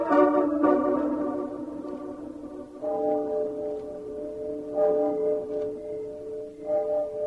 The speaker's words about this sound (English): Did you hear anything? Nothing but the owls and the clock striking midnight.